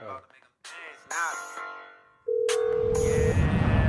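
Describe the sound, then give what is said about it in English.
People talk briefly, then a single steady mid-pitched ringback tone sounds for about a second on an outgoing phone call, followed by a loud rushing noise. “Are you guys calling him?”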